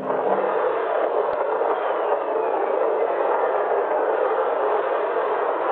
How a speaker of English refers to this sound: These whistles are made by lightning strikes. Lightning strikes over 2,000 kilometers long, which is longer than the entirety of New Zealand.